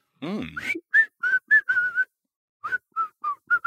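A catchy whistled melody, the hook of a rap song, in short, clear notes in two quick phrases with a brief pause between, loud, preceded by a short sliding vocal-like sound.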